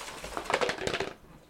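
A water bottle is shaken for about a second, giving a quick burst of rattling, clattering knocks at a moderate volume that stops abruptly, with no one talking.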